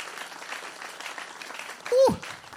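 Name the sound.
audience clapping and praising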